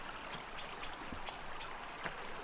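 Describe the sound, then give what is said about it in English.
Steady, soft rush of river water flowing between stepping stones at the foot of Box Hill, recorded while crossing the river on them, a continuous hiss broken by a few small splashy ticks, with no voices. “And you might just be able to hear the sort of rush of the water between the stepping stones as we're going.”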